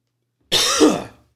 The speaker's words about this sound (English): I got a cough here.